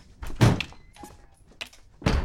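Two heavy, dull thumps land on a door about two seconds apart, loud and close, with a few fainter clunks in between and no talking.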